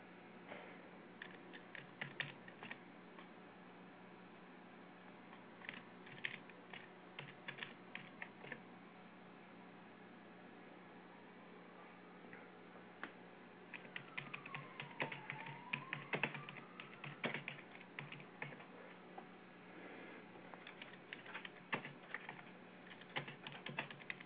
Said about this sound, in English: Typing here